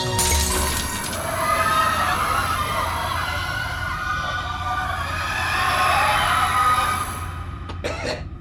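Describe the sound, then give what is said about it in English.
A sharp crack of a gunshot and the shattering of a one-way porthole's glass at the start, followed by several seconds of loud, dense grinding and rattling noise, with no voices. “Shoot out the glass.”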